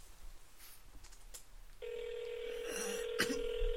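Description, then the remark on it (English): After a quiet moment of faint background noise, a phone call's ringing tone starts up: a steady, buzzy electronic tone that holds on continuously, fairly loud, with no talking over it. “pick up your fucking phone, Jesus.”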